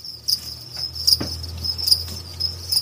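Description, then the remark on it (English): Many crickets being raised as food at an edible insect farm in Denver chirp continuously in a dense, high-pitched chorus, steady, with faint low rumble underneath and no voices. “These are crickets being raised for you to eat at the Rocky Mountain Micro Ranch in Denver.”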